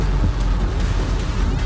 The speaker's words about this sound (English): Please tell me that car is not headed this way.